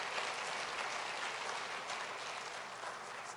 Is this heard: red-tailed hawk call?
no